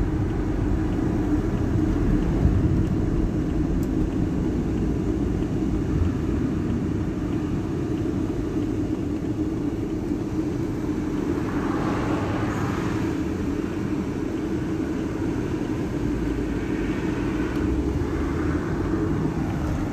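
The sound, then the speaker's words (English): A car engine rumbles steadily from inside the vehicle as the driver makes a U-turn, a deep continuous drone with road noise and a couple of brief hissing swells as the car maneuvers. No one speaks. “Alright, I'm going to have to pull a U-turn here.”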